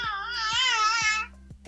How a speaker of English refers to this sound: If you've heard the last part, because my son just screamed.